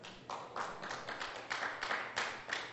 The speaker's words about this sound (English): That's a couple claps. Thank you for those few claps.